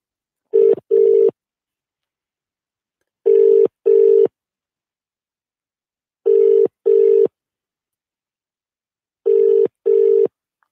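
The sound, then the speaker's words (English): A telephone ringing tone repeats four times, each ring a quick double burst of steady electronic tone followed by a pause, heard clearly and alone with no talking. “Let's hit the phone lines once again.”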